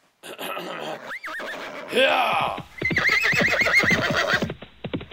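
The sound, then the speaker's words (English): Bandits' horses whinny loudly, then a rapid run of galloping hoofbeats drums off as the bandits ride away, mixed with rowdy shouts from several voices, the whole commotion energetic before ending abruptly. “And all the bandits, just as furiously as they came, thundered off on their horses.”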